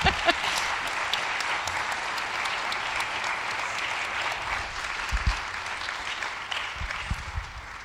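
An audience claps steadily for several seconds, a dense, sustained patter of many hands at fairly constant loudness, with a few low thumps near the end and no voices over it.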